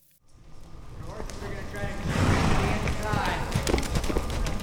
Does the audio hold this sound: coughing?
no